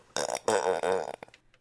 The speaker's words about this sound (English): Here's the burp. This doesn't sound healthy. And this doesn't encourage me to want to do it. Just take a listen.